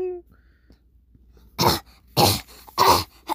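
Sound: imitated repeated coughing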